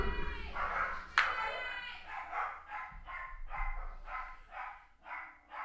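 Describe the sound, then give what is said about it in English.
Several dogs fighting over a new toy bark and yip excitedly in quick, repeated bursts, loud, with a sharp higher yelp near the start and a steady run of barks after. “My dogs are going crazy.”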